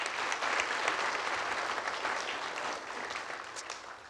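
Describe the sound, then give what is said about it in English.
A crowd applauds for Colin, a Marshall High School graduate, clapping steadily for about four seconds, a dense wash of many hands at an even, moderate loudness that thins only slightly toward the end, with no voices. “Give Colin a hand.”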